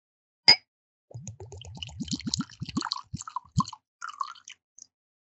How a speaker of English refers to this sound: That was lovely. I love the pour from those sample bottles. Right? They sound great. They do.